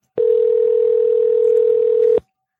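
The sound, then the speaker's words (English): A phone call ringing through to voicemail: a single steady electronic tone, held at one mid pitch for about two seconds, loud and unbroken before it cuts off abruptly. No one speaks. “Hey, let's just do the rest of the show on her voicemail. Oh, let's leave her a voicemail.”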